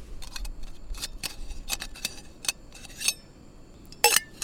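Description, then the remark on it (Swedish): A can of crushed tomatoes tipped into a pot of softened garlic and zucchini, heard as a run of quick metallic scrapes and clinks, with a sharper clank near the end and no talking. “Så nu när då vitlöken och zucchinin har blivit lite så här mojsiga, så slår jag i en burk krossade tomater och ska också ta lite vatten.”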